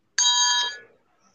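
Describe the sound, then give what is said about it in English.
A single bright, metallic bell strike rings out clearly, its shimmering tone holding briefly before fading away within about a second. No one speaks. “Good night. Ring the bell.”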